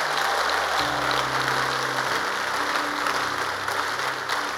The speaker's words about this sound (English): And if those people are here, let them stand to their feet and jump those two precious hands. Make a joyful noise to the Lord. Are you sure you are clapping? I want you to clap, not for me.